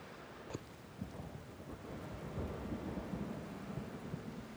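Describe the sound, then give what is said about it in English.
Steady rain pours down with a dense, crackling patter and a low rumbling undertone, growing slightly heavier after the first couple of seconds. No voices are heard. “I don't want to wait for the bus in the rain.”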